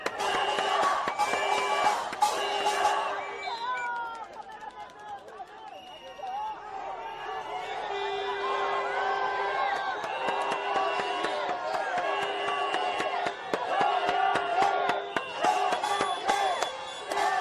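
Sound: crowd chanting protest slogans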